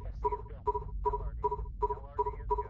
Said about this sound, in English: You can also hear the sine wave guiding you. Get closer and the tone will increase.